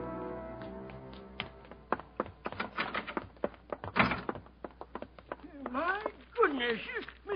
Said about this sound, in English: Doors slamming all over the place.